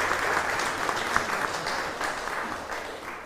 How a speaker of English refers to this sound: Ladies, let's give her a round of applause.